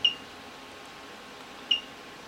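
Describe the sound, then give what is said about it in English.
Two short, high-pitched electronic beeps from the down arrow key being pressed on a mobile phone keypad to open the menu, the second coming about a second and a half after the first, over a faint steady hiss. “I simply just press the down arrow key.”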